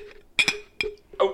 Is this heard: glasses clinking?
yes